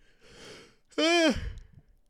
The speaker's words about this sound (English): Wow. Oh my God. Just a random yawn in the middle of all that, huh?